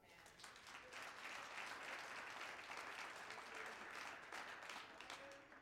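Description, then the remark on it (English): A large group claps their hands steadily for several seconds to give God glory, a dense, continuous wash of applause that fills the space at a fairly even, moderate loudness. “Clap your hands and give God glory.”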